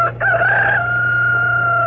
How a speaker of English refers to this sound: That's better. That was the rooster.